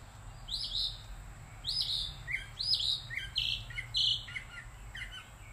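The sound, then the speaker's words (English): Birds chirping in the woods, a series of bright, repeated tweets in quick bursts over a low steady background hum, clear with no one talking. “The birds coming closer and closer to me every time I sit outside and I pray in the woods.”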